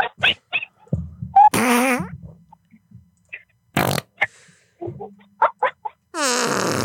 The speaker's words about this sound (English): Let's go fart for fart, baby. Let's go. What you got, girl? Oh, give me fart for fart. We're going fart for fart. Here we go.